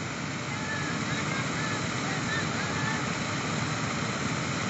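A steady, dense roar of rushing water from a waterfall on a river in South Africa, holding an even loudness throughout with no breaks or changes.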